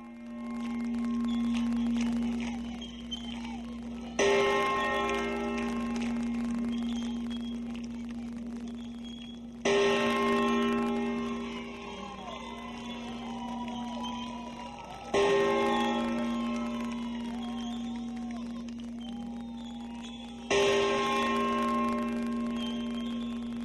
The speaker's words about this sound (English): The Liberty Bell rings out in honor of the Holy Father at the conclusion of his address.